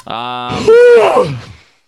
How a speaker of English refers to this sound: You're going to be okay there, pal? I yawned.